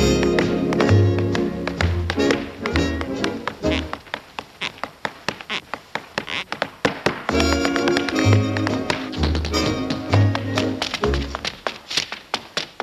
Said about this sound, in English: Yes, that's Gene Kelly dancing up a storm in a movie called Summer Stock from 1950. I hope we can agree that he was a genius, that he did things with tap shoes that most of us have never seen, couldn't imagine doing ourselves.